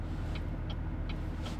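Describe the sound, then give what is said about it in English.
Steady low engine and road rumble from inside a car creeping along in slow traffic in rural Maine, with four evenly spaced high ticks over about a second and a half. No one speaks. “There's traffic all the way up this way.”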